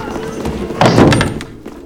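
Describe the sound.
A single heavy door slams shut with a loud thud partway through, its boom fading over about half a second amid faint background voices.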